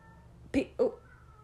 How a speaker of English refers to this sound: Go save your cat. No, that's Pinto. Oh, then don't worry about it. She'll probably stop. So, that's her cats. Yeah, sorry if you hear them.